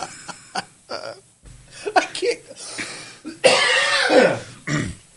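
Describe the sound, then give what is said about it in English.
A fairly loud coughing fit: several short, sharp coughs and throat-clearing sounds, then a longer harsh, raspy spell of coughing before it trails off. “I can't laugh because it's going to cause a cough.”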